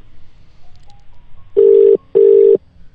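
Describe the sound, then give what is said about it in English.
A quiet sequence of short dialing tones, then two loud, steady ringback tones of about half a second each with a brief gap between, like an outgoing phone call ringing. No one speaks. “see whether this person is able to pick up the phone.”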